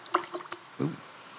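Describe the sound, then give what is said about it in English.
Liquid is poured into a communion cup: a few quick, soft splashes and drips, then a brief fuller gurgle as it settles. Quiet, with no talking. “It was a hearty pour.”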